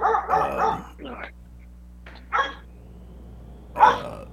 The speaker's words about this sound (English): Let me move myself inside and take these dogs with me so they shut up. Come on, buddy. Well, there's squirrels out there, man. They need some squirrels. Yeah, that's what I think he's barking at.